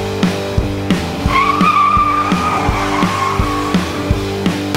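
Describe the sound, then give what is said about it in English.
Car tires screech as a car stops suddenly, almost hitting a child, in a long, wavering high-pitched squeal lasting a few seconds, sounding over a steady, thumping low rhythmic beat, with no voices. “Oh, geez Louise, I almost hit a child.”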